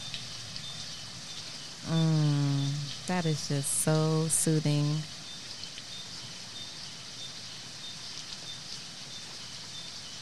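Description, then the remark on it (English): Soft, steady April rain hisses evenly throughout, a gentle continuous patter at low volume, while a person speaks briefly over it near the middle. “What about some April rain? Ooh, I love that.”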